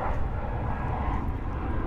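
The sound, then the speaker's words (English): A steady, broad rumble of an airplane passing overhead, loud and continuous with low-frequency roar dominating, no talking over it. “Wait for the plane.”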